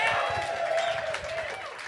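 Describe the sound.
A crowd applauds and cheers in a steady, dense wash of clapping, with whoops and a few raised voices rising over it throughout.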